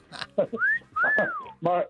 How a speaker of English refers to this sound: ever whistled at someone? Like, I can't whistle now. Like one of those.